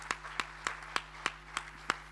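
A round of applause that sounds like steady, evenly spaced hand claps, about seven sharp claps at a brisk even rhythm, over a low constant electrical hum, with no talking.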